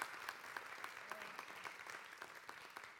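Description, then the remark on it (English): A church audience applauds steadily for about three seconds to welcome a newborn baby into the church family, a dense crackle of many hands clapping at an even, sustained loudness with no voices standing out. “Yes, big round of applause.”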